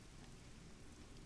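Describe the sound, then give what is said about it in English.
Steady rain falls in a continuous, dense hiss, with no pauses or individual drops standing out; it is fairly loud, with a low rumble underneath and no voices. “As a rain sort of start... kicking down on you guys.”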